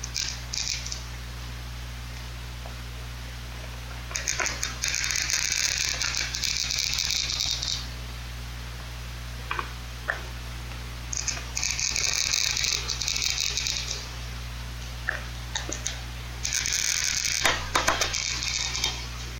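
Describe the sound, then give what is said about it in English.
A glass cutter grinds and crunches through a chunk of glass, recorded with a microphone and recorder, in several harsh, gritty bursts of scraping and crackling, separated by pauses, over a steady low hum, with no talking. “Well, this is what Leslie created in, I think, her kitchen with a glass cutter and a microphone and a recorder and a chunk of glass as she shredded it with the glass cutter.”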